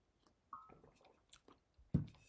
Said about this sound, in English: Let me take a sip of this water.